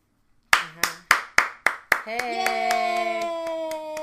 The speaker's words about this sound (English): Hey, you doing your own applause? It's for us. Okay. Round of applause.